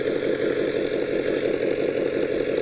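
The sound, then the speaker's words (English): A large 5-liter car engine idles steadily, a deep, even rumble with a faint rhythmic burble that holds at a constant level throughout, with no one talking. “That sounds to me like the 5 liter, though.”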